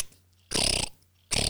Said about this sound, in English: So when you're pressing the shutter button on that camera, it's literally like a machine gun. You can hear this thing going.